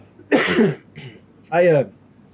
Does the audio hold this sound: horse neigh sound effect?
no